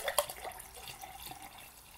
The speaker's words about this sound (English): That's me filling a glass, not weeing, just for anybody at home.